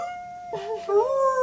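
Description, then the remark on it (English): A person howls like a wolf, a short vocal howl that wavers and then swells upward into a louder sustained note, with a faint steady tone humming underneath. “But I'm not a wolf, I'm an angel.”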